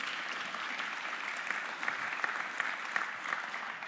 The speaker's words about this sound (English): And as they come and join me on the stage, why don't we give them a little round of applause here as they come?